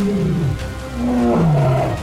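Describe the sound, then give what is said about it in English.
A deep, rumbling lion growl swells into a sustained roar, loud, with harmonic tones sliding downward over about two seconds and no voices present. “My fingers curled around the whip, ready to disarm and take Lightfoot hostage, until I heard the low growl. Oh, the lion pounced on our captors.”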